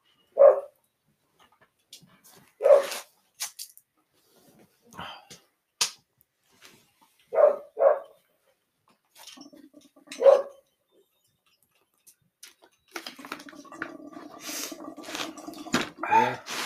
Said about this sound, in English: That fucking dog, I swear to God. I'll kill that little thing. I love that dog, but I'm gonna go out there and stab him in the neck.